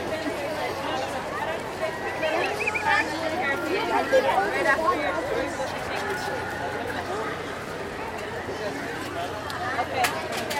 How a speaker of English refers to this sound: Okay, we're out of the background booth areas and only have ambient crowd noises. So we'll talk to you again when we get closer to the front of the Splash Mountain line.